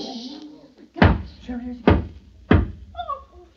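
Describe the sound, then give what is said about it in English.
Three heavy knocks by somebody at a door ring out loud, spaced slightly unevenly, with faint murmuring voices in the gaps between them. “If you are present tonight, knock 3 times that we may know.”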